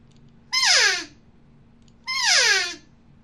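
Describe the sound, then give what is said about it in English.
Two raspy elk cow calls blown with an exhale on an open-reed call, each about half a second long and sliding downward in pitch, loud and alone over a faint steady low hum. “I'm going to blow a cow sound with this open reed.”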